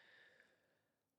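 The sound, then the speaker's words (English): A single slow, deep breath drawn in, a soft airy hiss that gradually fades, closing with a brief sharper burst of breath noise. Quiet, with no talking. “Taking a big deep breath in and allowing yourself to feel the earth underneath you.”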